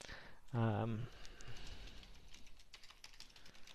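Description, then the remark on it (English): Soft, irregular clicking of someone typing text on a computer keyboard into the text input of a Shiny app, quiet, following a brief burst of a voice near the start. “And as I'm typing in text, you can see that the title is immediately updating.”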